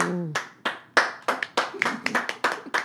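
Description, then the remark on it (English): A short burst of applause sound effect: about a dozen sharp, uneven hand claps ringing out loudly over three seconds, preceded by a brief low tonal note at the very start. “Oh, man, the in-studio crowd is loving that choice.”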